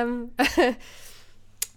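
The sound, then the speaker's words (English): A person sneezes: a rising, drawn-in "ah" leads into a sharp, breathy burst that sounds almost doubled, fairly loud, followed by quiet background noise and a faint hiss. “That sounded like a good sneeze.”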